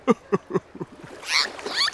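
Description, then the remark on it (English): A call from Doris the dolphin: a few quick, evenly spaced pulsing bursts, then shrill, wavering high whistles that squeak and rise in pitch, fairly loud with no talking. “Do you hear that? It sounds like a dolphin.”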